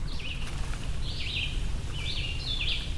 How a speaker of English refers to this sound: There's so many amazing bird songs out here, and I'm hearing crickets too.